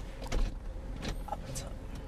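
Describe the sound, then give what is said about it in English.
Car power windows whir down to crack them open inside a vehicle as the car is being turned off, a steady motorized hum over low engine rumble, with faint voices in the background. “I'm going to just turn off the car. Crack the windows.”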